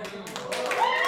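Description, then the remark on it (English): Loud, dense applause from an audience at a committee hearing, a steady wash of clapping that swells slightly, with Cheney's voice speaking faintly underneath it, hard to make out. “And the applause was so loud that it was hard to make out what Cheney said next.”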